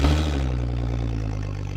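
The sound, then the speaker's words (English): A boat engine is started with the keys to cross a lake. It catches with a brief rough burst, then settles into a steady, loud, low-pitched droning rumble with a faint rattling clatter on top. “All right, start it up.”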